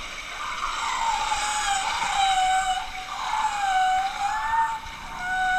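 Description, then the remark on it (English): Whale song: long, sustained tonal calls that rise and fall slowly in pitch, layered with bright harmonics, holding a steady moderate loudness with a few brief dips between phrases. “Okay, that's just whale song.”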